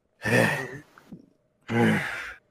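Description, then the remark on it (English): Two heavy, breathy exhalations, one after the other with a short pause between, like loud sighing breaths with no talking. “Just breathing hard.”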